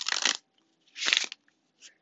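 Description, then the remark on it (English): Two quick bursts of a deck of cards being shuffled during a card reading, crisp papery riffles, followed by a softer brief flick near the end. “I cannot guarantee that you will hear me shuffling the whole duration of this reading, but based off of faith, we will go from here.”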